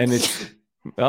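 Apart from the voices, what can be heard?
human sneeze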